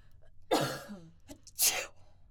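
A single harsh cough is followed a second later by a sharp, hissy sneeze that a person performs on purpose as a fake sneeze, both fairly loud with no talking.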